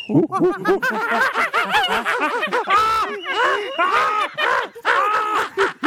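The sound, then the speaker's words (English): A person's voice imitates monkey sounds, a rapid run of high, hooting and chattering whoops that rise and fall in pitch, loud and continuous for several seconds with no ordinary speech. “3, 2, 1, monkey sounds.”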